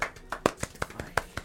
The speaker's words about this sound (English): Golf clap. Very good.